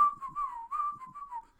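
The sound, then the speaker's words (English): Someone whistles a short, gentle melody of the Christmas carol Silent Night, the pure tone gliding between a few nearby notes in a smooth, connected phrase with no talking underneath. “I'm going to whistle.”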